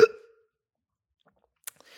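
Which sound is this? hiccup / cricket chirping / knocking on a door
hiccup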